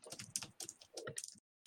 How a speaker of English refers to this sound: Somebody's typing, and I think it's thing. I don't know who's typing.